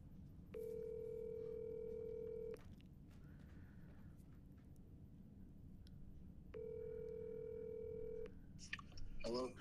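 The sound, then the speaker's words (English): Telephone tones through a speakerphone as a call is placed: two long, steady beeps about two seconds each, separated by a pause, over a noisy background with a brief clatter at the end. “I'm recording and I'm talking to you on the phone. I got it on speakerphone.”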